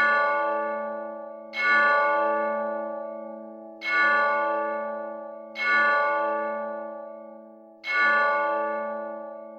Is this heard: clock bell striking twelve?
yes